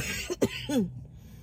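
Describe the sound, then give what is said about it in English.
A short burst of coughing: three quick, harsh coughs in close succession, with no talking, ending in a rasping throat-clearing sound before trailing off into quiet. “I can't stop coughing.”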